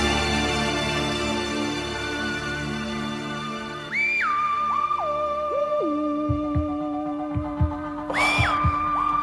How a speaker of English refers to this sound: Lying in the dark, listening to that, the old heartbeats going.